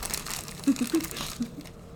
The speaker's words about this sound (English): What are you? Are you crumpling it up? Are you stealing it?